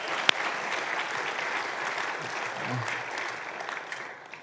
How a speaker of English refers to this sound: So let's give everyone who's not with us specifically, but with us, a hand of applause saying, hey, welcome.